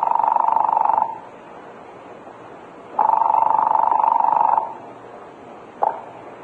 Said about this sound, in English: I picked up the phone and asked for the police department agent. When they answered, I asked for Lieutenant Rankin. I was holding my breath as I heard the buzz on the line at the other end.